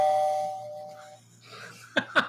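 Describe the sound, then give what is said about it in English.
A doorbell chime rings out with a clear sustained tone that slowly fades, then two quick, bright dings follow close together after a short pause. No one speaks. “Yeah, we should have a bell. I got a bell.”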